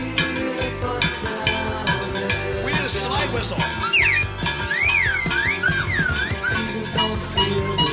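Sliding whistled notes rise and fall over a loud, busy band with steady drums and percussion, the whistling most prominent in the second half.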